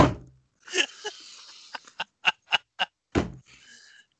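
A sharp, breathy sneeze bursts out, followed by a quick run of short percussive snaps and a second explosive burst, with no talking.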